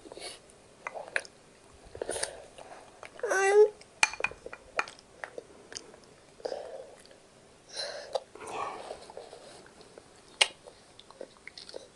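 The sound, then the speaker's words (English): Wet, irregular slurping and licking sounds of a dog eating food it is being fed, a messy series of smacks and sucks repeating in uneven bursts with brief pauses, moderately loud and with no talking over them. “Oh, noisy boy. Slap, suck.”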